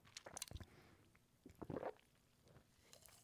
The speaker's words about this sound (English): I'm going to take a sip of my energizing midnight grape kickstart here.